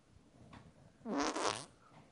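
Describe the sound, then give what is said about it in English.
A single wet, sputtering armpit fart, loud, lasting under a second with a buzzy, squelching flutter before it trails off. “I'm just going to do a little armpit farting here to.”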